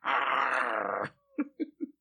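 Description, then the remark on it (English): A man's voice imitates the growl of Dan Aykroyd in a dirty Santa Claus outfit in Trading Places: one loud, rough, sustained snarl lasting about a second, followed by a quick series of short, throaty grunting bursts. “And he growls at the dude.”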